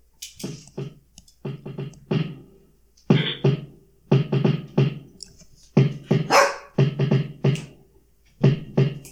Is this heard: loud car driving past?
no